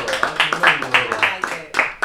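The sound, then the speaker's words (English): Steady rhythmic clapping for a book club, about eight sharp claps in two seconds at an even tempo, with voices murmuring underneath. “Yeah, clap it up for the book club.”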